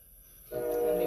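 A train horn blares in abruptly after a brief low rumble, sustaining a loud, steady, multi-toned blast that fills the rest of the short moment.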